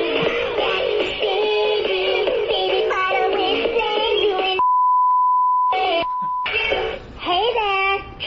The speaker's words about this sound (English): We had to bleep it out because the singing Baby Bratz Doll's lyrics sound too much like profanity.